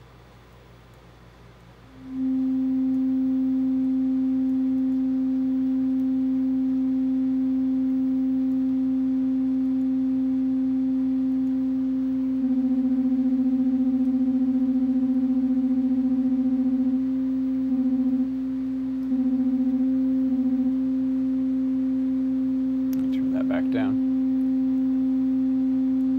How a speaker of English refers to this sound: So that's the basic idea. I just have my computer keyboard acting as a MIDI keyboard to send it notes.